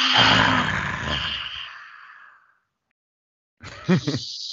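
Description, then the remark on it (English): A loud, breathy roaring exhale with a raspy growl, fading out over about two seconds, then silence before a short voiced sound begins. A person does the yoga lion's breath, taking a big breath in, sticking out the tongue and exhaling with a roar. “Take a nice big breath in. Stick out your tongue and roar.”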